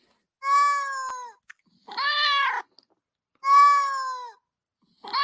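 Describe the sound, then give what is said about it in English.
A cat meows loudly and insistently, four drawn-out, wavering cries in a steady back-and-forth rhythm with brief silences between them and no talking. “Oh, we got the cat here. Oh, there's a cat.”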